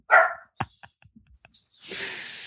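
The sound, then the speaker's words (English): A dog lets out a loud, sharp bark, followed by a few softer yips and clicks, then a hissy rush of noise at the end. No one speaks. “We talk about Zen and dogs bark.”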